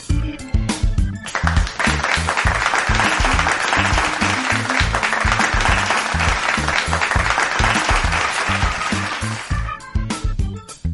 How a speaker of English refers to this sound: First of all, thank you very much. Thank you very much for the clap.